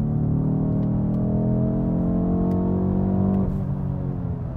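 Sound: car engine revving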